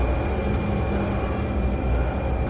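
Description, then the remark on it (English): A 1,000-ton train roars past, a loud, steady rumble of heavy wheels and machinery that holds constant throughout with no voices. “Jack, I thought, as I watched the train thunder by the place where Trick used to be.”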